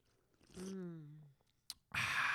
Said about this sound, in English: I like the hazy IPA, and that's what I'm drinking. So, good job. Quick. Cheers. Quick cheers. A little clink. Boom. Sip into the mic.